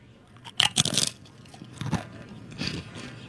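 Crunching on tortilla chips close to the mic: a loud burst of crisp bites near the start, then softer, scattered crunches as the chewing continues, with no talking.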